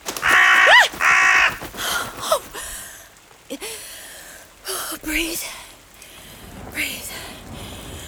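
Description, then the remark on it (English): Two loud, harsh crow caws ring out in quick succession, followed by several seconds of quieter, breathy human vocal sounds. “Just a lovely, natural birdie. Just a silly old crow.”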